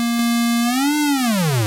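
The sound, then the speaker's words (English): A steady synthesizer oscillator tone from an HTML5 web app running on a desktop, rich in buzzy harmonics, holds one pitch, rises slightly, then sweeps downward near the end as the oscillator speed is changed. It is loud and sustained with no voices. “And you can, you know, it takes you through changing the oscillator speed.”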